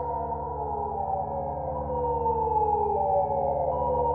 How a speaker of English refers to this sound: The morning wake-up call would always blare loud enough to leave lingering noise in every ear it reached, cracking the air with a siren that shook every bed into waking. The sound was harsh, but celebrated for its efficiency.